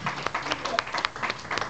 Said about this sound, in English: All right, this group, give them a round of applause.